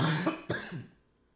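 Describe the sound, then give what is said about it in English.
A person with bronchitis gives a couple of harsh, raspy coughs in quick succession, with a throaty clearing quality, then the sound fades into quiet. No one speaks. “We got bronchitis on the show tonight.”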